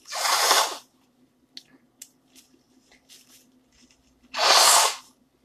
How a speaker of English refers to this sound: Hold on while I blow my nose.